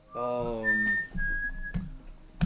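A person whistles a clear, steady high tone that holds for about a second to call a pet, preceded by a brief voiced hum, with a few soft knocks and clicks in the background.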